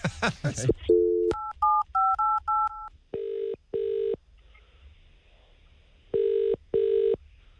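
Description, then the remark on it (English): A brief voice at the start, then a quick run of telephone keypad tones as The Edge radio station calls a listener's partner, followed by the ringing tone in two double bursts separated by a pause, clear over a quiet line. “We're going to call him now, and we're just going to see if he does answer the phone.”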